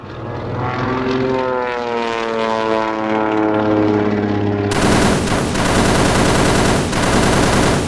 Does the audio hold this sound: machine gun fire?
yes